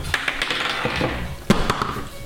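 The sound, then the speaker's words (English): Dice clatter and tumble across a hard tabletop in a quick, irregular series of sharp clicks and taps, with a louder knock partway through before the rattling settles; the roll comes up 6. No one speaks. “Okay, I rolled a 6.”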